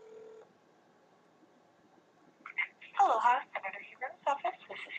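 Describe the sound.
A phone line's ringing tone ends abruptly, a short stretch of quiet line hiss follows, and then someone answers and starts talking over the telephone.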